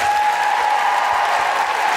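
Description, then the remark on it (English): Sustained, dense applause from an audience at the Southbank Centre for the interpreters at a WOW birthday event, a steady wash of many hands clapping at full volume throughout, with no voices standing out above it. “Big round of applause for our phenomenal interpreters.”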